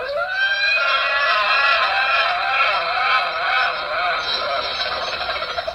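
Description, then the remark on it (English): A person imitates a horse with one very long, strained whinny that holds for nearly six seconds, its pitch wavering throughout before it breaks into a few sputtering pulses at the end. “That's the longest conceivable horse noise.”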